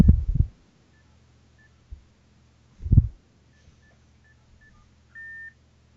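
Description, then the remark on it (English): A series of short, faint telephone keypad beeps spaced irregularly as someone redials Boris, the Mayor of London, after an engaged line, followed by one longer steady ringing tone at the end, with a few low muffled thumps from handling the phone earlier on. “Oh, here we go. Here we go. It's ringing now.”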